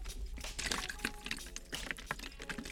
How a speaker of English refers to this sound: Consider this part of the ASMR segment. I'm gonna take, you hear the water? Hold on. Hear the gulping and everything.